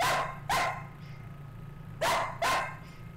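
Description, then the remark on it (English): A herding dog barks in two quick pairs, four sharp, loud woofs separated by a short pause, over a low steady hum. “It's like Bossy does want to bark when … is talking all of a sudden.”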